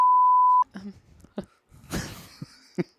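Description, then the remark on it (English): A loud, steady censor beep rings out as a single flat tone lasting about half a second, then cuts off abruptly into scattered quieter vocal sounds and a breathy, cough-like burst. “And there's the first beep on the show.”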